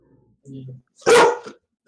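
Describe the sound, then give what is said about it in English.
A pet dog, being played with by family members, lets out one sharp, loud bark, preceded by a brief, softer low-pitched sound, with silence around both. “Does my dog hear you?”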